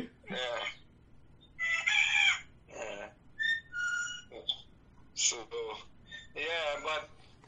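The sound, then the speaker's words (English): A parrot mimics a ringing telephone with a series of fairly loud squawky bursts and a few clear electronic-sounding beeps and trills, separated by short pauses. “Yeah, he makes that kind of noise so that he can take it, you know. He does that and he imitates the phone.”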